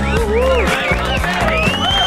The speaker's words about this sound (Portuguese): Obrigado pelos aplausos, são aplausos gravados. Sim, mais sinceros. Mas são aplausos que a gente sente aqui.